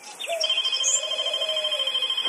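A telephone in a TV scene rings continuously with a steady electronic trill, its warbling tone sustained without pause for a couple of seconds, clear, with no one speaking; the character won't answer it.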